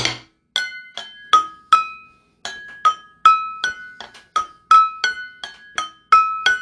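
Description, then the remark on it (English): A great-grandmother's glass vases are struck again and again in an uneven rhythm, each strike giving a bright, high ringing tone that decays quickly. About fifteen clear strikes, with no voices. “Smell the vases ringing, okay? That's my great-grandmother's vases, okay?”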